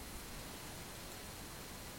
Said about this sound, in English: Because this one has that little bit of static in the background. Yeah, I should probably look at, like, a powered mixer.